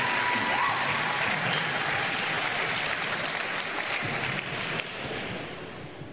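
A large church audience claps for the Lord during a bilingual Portuguese-English service, a dense wash of applause filling the space for several seconds before beginning to thin out slightly near the end.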